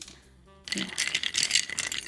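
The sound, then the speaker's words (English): Ice cubes clink and rattle as they are stirred in a glass with rye whiskey while making a cocktail, a quick run of bright, jittery clicks that starts abruptly after a near-silent moment and keeps going. “So just stirring in the glass with the ice and you're keeping the ice in there.”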